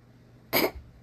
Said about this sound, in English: What if that picked up? The little tiny cat sneeze.